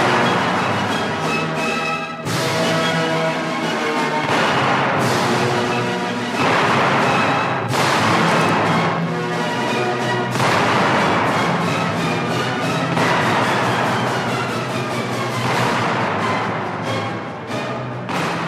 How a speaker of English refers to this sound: a recording featuring conductor Morton Gould and, of course, some loud cannon blasts